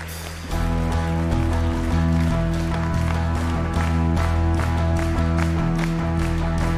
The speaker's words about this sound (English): Give Jesus Christ the greatest hand clap of the day. God bless you.